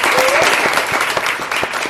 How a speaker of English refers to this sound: So let's give me a round of applause.